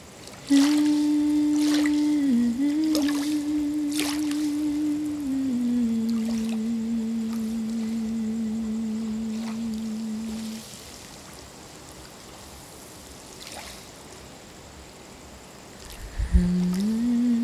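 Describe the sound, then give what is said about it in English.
Gentle water laps on the sandy shore of a beach in Uluwatu right by the recorder, in soft, irregular splashes, while a person lying with their head on the sand hums a long, steady low note in meditation through most of it before pausing and starting again. “I'm just sitting on the beach in Uluwatu, and my head is down on the sand, and the recorder is right next to me, and the water is lapping on the shore right by my head, and I'm just humming in meditation.”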